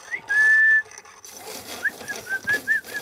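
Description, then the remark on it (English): Human whistling as a backstage signal in a theatre: one long, steady whistled note, then a quick series of four or five short chirping whistles, clear over a faint background hiss, with no talking. “They would communicate to each other by whistling.”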